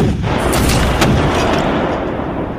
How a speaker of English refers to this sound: The American artillery responded, including 2 guns commanded by young Captain Alexander Hamilton. The American cannon fire was unrelenting, concentrating their attack on the Hessians' artillery.